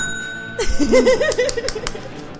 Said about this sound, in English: And ring that bell.